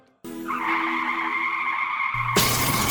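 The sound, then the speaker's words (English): Car tires let out a loud, sustained squeal for about two seconds, then a sudden crash hits, a burst of harsh noise that rings on to the end. “We hope this never happens to you. If it does, trust your car to the pros at Auto Techies”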